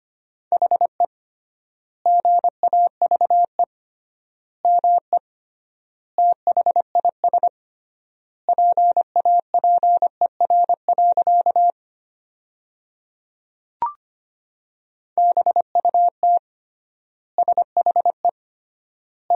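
Morse code at about 25 words per minute with triple word spacing, sending sentences built from the top 500 words: a single steady mid-pitched tone beeping in rapid dots and dashes, grouped into words with long pauses between them, plus one brief click.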